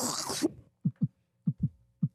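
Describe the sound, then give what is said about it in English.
A voice mimics a heartbeat with soft, low lub-dub thumps, three paired beats in a steady rhythm, moderately quiet, following a brief breathy rush of noise. “Wait, do the heartbeat again?”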